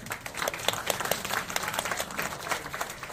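A crowd applauds steadily, many hands clapping in a dense, crackling patter that holds at an even, moderate loudness for a few seconds without any talking.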